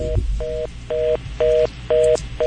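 A rapid busy signal over a caller's phone line: steady two-tone beeps pulsing on and off about twice a second, six in a row, with a faint low hum beneath.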